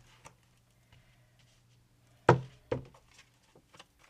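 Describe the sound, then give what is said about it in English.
Tarot cards being shuffled slowly and carefully so as not to disturb the cards underneath: faint scattered ticks, then two sharper slapping taps close together, over a quiet steady low hum with no talking. “Trying not to mess up the cards underneath, guys. So if you know, trying to figure out why I'm shuffling so carefully.”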